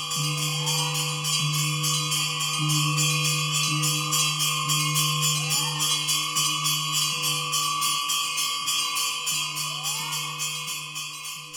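Bells ring continuously in a temple in Sri Lanka with sustained, layered metallic tones, while a rapid rhythmic pulsing (hooping) runs steadily underneath. The sound stays loud and busy throughout, with no voices.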